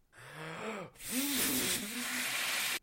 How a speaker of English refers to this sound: It looks like you're trying to blow up some balloons. Yeah, no shit. Why are you blowing up balloons?